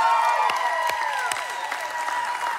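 An audience claps and cheers steadily, a dense wash of applause with high whoops and whistle-like cries riding on top, loud and sustained the whole time with no talking.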